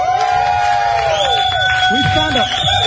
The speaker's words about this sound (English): I want everybody to cheer him on. Don't just sit there. Have a lot of fun.